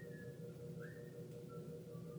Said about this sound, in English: And I don't know if you guys can hear somebody whistling. Somebody out in the hallway. Somebody's excited to get their day started. Whistling their way to work in the morning.